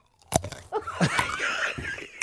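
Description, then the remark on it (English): Loud crunching and chewing of a crisp, juicy, salty hot pickle: a sharp bite from the crispy side, then wet, squelchy mastication with several crackly snaps, heard alone without talking. “I think you're a loud chewer. Did you finish the whole pickle?”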